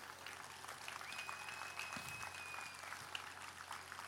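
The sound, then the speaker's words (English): Sustained applause from a large crowd at a church's 40th anniversary, for members who stand up, a steady dense wash of clapping that holds at an even level for several seconds with no speech over it. “Can we applaud for these people?”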